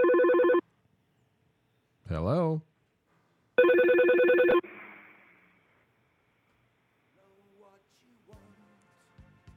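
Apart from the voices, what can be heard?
phone call ringing tone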